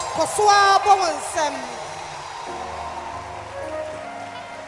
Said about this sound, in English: Clap your hands for Jesus. A louder hand clap. A louder hand clap. A louder hand clap. Keep clapping.